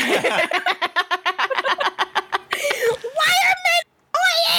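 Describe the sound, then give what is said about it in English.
Voices let out high, shrill screeching cries, imitating pterodactyls, after a burst of rapid staccato cackling. The calls are loud and come in wavering, rising bursts with a brief gap. “The moment I leave, you two just turn into fucking pterodactyls.”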